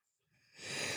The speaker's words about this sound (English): But, well, you don't like that? My little cough? Dude, I have like a little bit of a scratchy throat right now. I know. It's like. It's the cats. The cats have got me.